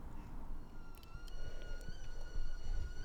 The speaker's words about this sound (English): There's the kettle. First cup of the morning.